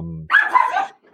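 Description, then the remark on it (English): A dog barks excitedly, one loud, drawn-out bark with a second bark starting right after, following a brief low hum of a voice. “This dog is freaking out.”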